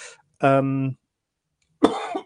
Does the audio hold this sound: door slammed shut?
no